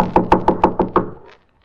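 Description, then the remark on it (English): Six firm knocks on a wooden door in a quick, even rhythm, fairly loud, followed by silence. “Well, so you want to, I guess it's the door.”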